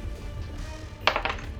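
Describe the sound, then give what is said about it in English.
A die rolled for an attack roll clatters onto a keyboard in a quick burst of several sharp, bouncing clicks, fairly loud over a steady low background rumble. “I'll do that again because it landed on the keyboard.”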